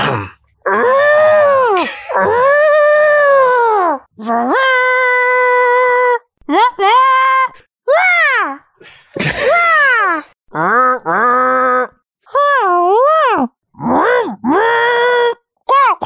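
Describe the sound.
A person vocally imitates a deer call with a series of loud, drawn-out nasal bleats and groans that rise and fall in pitch, repeated about ten times with short gaps between them.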